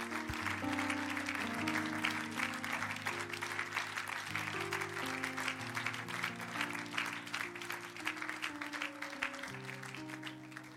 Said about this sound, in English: Put your Bibles down or your electronic devices. Let's clap our hands one more time to the Lord.